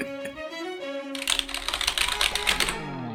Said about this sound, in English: I can hear typing.